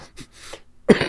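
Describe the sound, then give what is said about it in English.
After a near-silent stretch with faint breathy rustles, a loud, harsh cough bursts out and fills the final moments. “I'll have to edit that cough out.”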